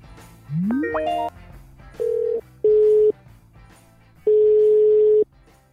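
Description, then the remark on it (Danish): A telephone dial tone while calling back after a lost connection: a quick rising electronic chirp, then three steady, loud tone bursts of uneven length with pauses between them, clear, with no voices. “hvis nu ringer jeg lige op igen.”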